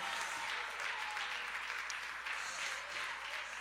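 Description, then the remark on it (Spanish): Steady, dense applause from an audience during a church worship service praising God, a continuous wash of many hands clapping at an even loudness for several seconds with no voices rising above it. “De un fuerte aplauso a la basera, a la bajalla.”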